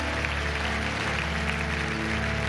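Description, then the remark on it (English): An audience claps in praise to God together in a dense, continuous wash of applause that holds steady for a couple of seconds, with a low sustained tonal hum underneath. “Come on, give him a clap praise again.”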